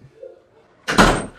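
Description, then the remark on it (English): A door is pulled shut, landing with a single loud, heavy thud and a brief rattle that rings out, after a moment of faint low murmuring. “I'm going to pull this door too much, man.”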